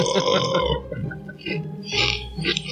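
A long, croaky burp rumbles close to the microphone, stretching over a couple of seconds with a few rough, gurgling bursts near the end.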